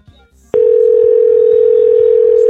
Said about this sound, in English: Oh, now the number's busy. What the hell?